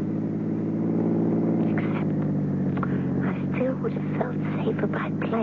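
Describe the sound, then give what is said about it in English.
A chauffeur-driven car's engine drones steadily throughout around midnight on the way to Madrid, a constant low hum from inside the moving vehicle, with people talking over it partway through. “Would have felt safer by plane than by car.”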